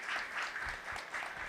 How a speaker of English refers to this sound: Big round of applause.